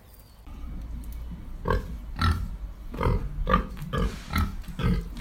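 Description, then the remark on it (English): A sow and her piglets grunt and snuffle in a pig pen, the sow lying in a big pile of hay with the piglets suckling: a steady run of short grunts about every half second over low barnyard rumble, with a few higher squeaky notes from the piglets mixed in. “Well, here we are at the pig pen, and quite unsurprisingly, big old mother sow is snuggled up in a huge pile of hay, and she's got all her piglets suckling.”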